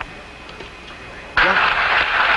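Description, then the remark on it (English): After a quiet, hissy stretch, a loud burst of crowd cheering erupts aboard the recovery ship Iwo Jima as Apollo 13's three main parachutes open, and keeps going, broad and noisy, with individual voices shouting within it over a radio-like transmission. “Listen to the crowd on the boat.”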